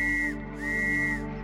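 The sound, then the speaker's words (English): Two loud, shrill blasts from an emergency whistle on a set of keys, blown by a person while walking, a short one followed after a brief gap by a longer sustained one, with no talking. “So I walked, blowing the whistle with every other step, hoping for any response.”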